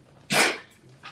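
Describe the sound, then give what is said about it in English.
A single sharp, explosive sneeze bursts out, followed by a quiet pause and a faint breathy puff near the end. No one speaks. “Bless you.”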